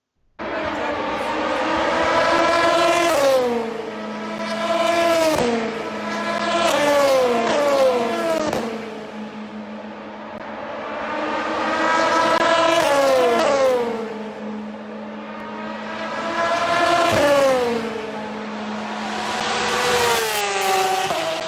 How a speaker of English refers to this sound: Here are some car noises, some racing noises from Le Mans last year, which we'll come on to. We'll come on to Le Mans later. But just enjoy the noise.